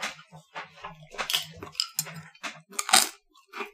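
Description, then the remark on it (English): Someone crunches on nachos with dip: a run of crisp, crackly bites and chewing bursts in an irregular rhythm, fairly loud, with short pauses between them and no talking. “Also, we're munching on nachos and them dip. Sorry, people.”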